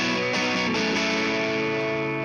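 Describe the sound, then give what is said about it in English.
Electric guitar chords strummed with light overdrive through a dynamic studio amp, a few quick strokes ringing into a loud, sustained, slightly gritty final chord strummed harder and a little more distorted, with no voices. “notice on that end strum, the last strum he does, it's a little more distorted”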